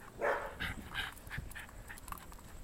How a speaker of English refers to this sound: I mean, Bud's, he's a barker a bit, but he... Dogs are going to bark, right?